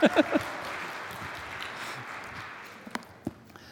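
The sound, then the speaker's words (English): A church audience applauds the worship team after a Thanksgiving hymn, a steady wash of many hands clapping that tapers off gradually over a few seconds, with a couple of sharper louder claps standing out near the end. “Thank you, worship team. You can applaud.”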